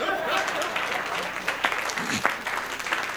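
An audience claps steadily in a dense, continuous wash of applause, with a few sharper claps and faint crowd murmur mixed in throughout.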